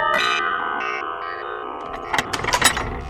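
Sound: doorbell ringing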